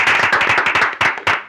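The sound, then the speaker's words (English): A burst of hands clapping for a special guest, several people at once, the claps quick and overlapping into loud applause with no voices over it. “Oh, yeah, clap it up.”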